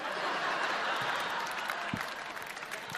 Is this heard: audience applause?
yes